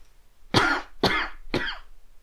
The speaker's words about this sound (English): that sounds like you have a bad cough.